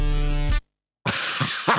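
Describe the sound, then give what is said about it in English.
A steady buzzing tone cuts off into a brief silence, followed by a few rough, breathy coughs. “You coughed.”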